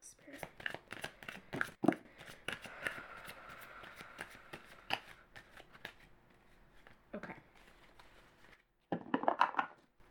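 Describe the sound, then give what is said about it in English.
Tarot cards are shuffled and sorted in a steady run of quick papery flicks and riffles, with a brief pause and then a final burst of rustling and snapping toward the end. “Lots of cards here. Let me just get them all sorted.”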